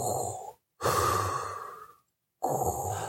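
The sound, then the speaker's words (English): A person imitates Darth Vader's heavy, mechanical respirator breathing: loud, hissing inhales and exhales in a slow rhythm with brief silent pauses between breaths. “And then whenever Darth Vader, you know, exists, he just kind of goes.”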